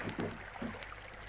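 Oars dip and splash rhythmically as a rowing boat glides through water, with a low continuous background rumble and gentle lapping sounds.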